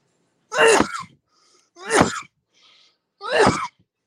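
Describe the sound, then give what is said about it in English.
Three loud, harsh sneezes or coughs into a microphone burst out one after another, each sharp and breathy with a quick fading tail, separated by short silent pauses and no talking. “Cough into the.”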